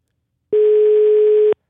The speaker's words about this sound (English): Yeah, that European ringtone.